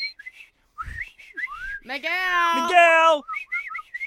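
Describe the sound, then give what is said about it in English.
A person whistles to call a dog named Miguel: a string of short, rising chirps, then one loud, sustained whistled note lasting about a second, followed by a few more quick chirping whistles. “Does he respond to whistling? He should.”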